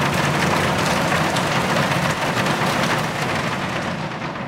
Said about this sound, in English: a wild storm, thunder that echoed in the nearby canyons, and sheets of lightning that flashed through the clear plastic roof, turning pitch black to daylight for seconds. The intense rain pummeled the taut plastic roof like a thousand crazy drummers.